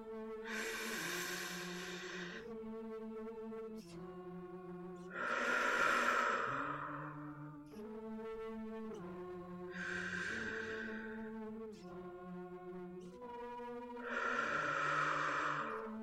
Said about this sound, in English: Okay. Maybe more deep breathing first.